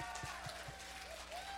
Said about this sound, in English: All right, go ahead and give the ladies one more hand of applause.